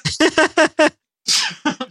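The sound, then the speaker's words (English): A loud sneeze: several quick gasping intakes build up, a brief pause, then a sharp, breathy burst followed by a couple of short sniffs. “If I would stop sneezing, I could probably come up with some more obscure Marvel characters.”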